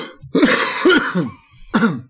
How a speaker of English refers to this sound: I don't even need to add a sound effect this week. There's just going to be just be that coughing. Cough. That could just be my regular one.